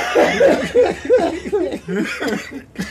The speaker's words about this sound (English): Oh, shit, I'm coughing up my butt.